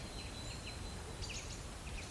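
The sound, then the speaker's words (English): Soft, short calls of nuthatches scurrying up and down oak tree trunks repeat at irregular intervals, faint high chirps over a steady low background rumble with a thin continuous high tone. No one speaks. “Those soft calls. Yeah, I can see not hatches scurrying up and down the oak tree trunks.”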